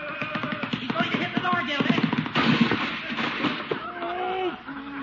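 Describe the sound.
In a radio comedy scene from The Great Gildersleeve, a goat rams a wooden door, splitting it down the middle with a burst of loud cracking and splintering thuds, wood breaking apart amid clattering noise, while voices shout over the commotion.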